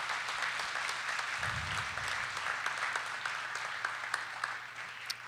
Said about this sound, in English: And I want to say again, it was mentioned earlier, but just to anybody who's a veteran here or family members of yours that are veterans, we just want to, can we give a hand clap for those folks that serve?